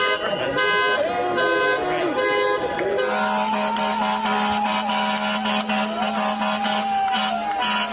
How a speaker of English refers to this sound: So they showed up outside the New York City mayor's home and honked their horns in the middle of the night.